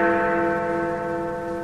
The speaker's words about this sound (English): So we always ring the bell 13 minutes early. Or is it 13 minutes late?